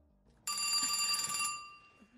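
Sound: telephone bell ringing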